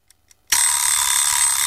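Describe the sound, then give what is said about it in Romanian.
An alarm clock on a nightstand, left on by mistake on a Saturday, bursts into loud, continuous bright ringing after a couple of faint ticks, shrill, sustained through the end with no voices. “Sună ceasul deșteptător de pe noptieră.”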